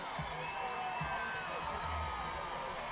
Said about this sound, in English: You hear that crowd cheering? That's from Oakland fans across the way. Oakland fans cheering, their football team cheering. You hear the air horns.